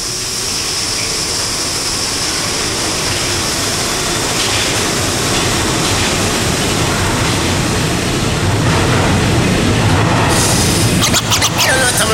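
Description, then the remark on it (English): A Brooklyn-bound subway express train, next stop New Lots Avenue, rumbles along at speed, a loud, steady roar of wheels and motor with metallic rattling and screeching, building slightly toward the end with clattering bursts. “A Brooklyn-bound Express train. The next stop is New Lots Avenue.”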